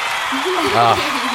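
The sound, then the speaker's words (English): A steady applause sound effect played in a studio: a dense wash of clapping that holds at an even level throughout, with a voice calling out briefly over it in the middle. “What an ego stroke that clap is.”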